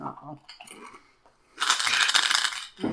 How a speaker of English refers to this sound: And we have the first official dice going into dice jail.